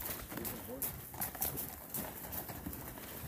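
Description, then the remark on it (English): Hooves clip-clop steadily on a hard surface as a group of unladen mules runs by, the quick overlapping beats fairly loud, with voices murmuring underneath. “Well, these are mules, I think. They're mixed with a horse and a donkey.”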